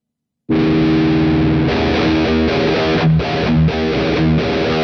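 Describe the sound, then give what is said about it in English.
After a brief silent start, a heavily distorted electric guitar, down-tuned to E-flat, plays a loud, thick riff of sustained low notes moving between single notes of E and D on the A string over the ringing low E string, with no voices. “I'm down-tuned to E-flat, and it goes in between the single notes of E and D.”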